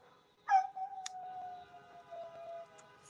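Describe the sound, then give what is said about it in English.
A dog in San Antonio lets out a long, wavering howl at car horns, starting sharply and holding a steady pitch for about two seconds before fading, with no one talking. “Some of these fucking dogs hate it. Like, ah, it's too much noise.”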